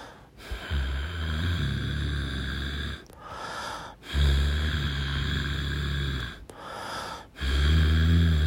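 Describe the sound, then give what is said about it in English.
A voice imitates the heavy, rasping breathing heard from a caller on the phone: four long, loud inhale-exhale cycles with brief pauses between them, steady and rhythmic, with no talking over it. “when they pick up the phone call, they will hear someone breathing.”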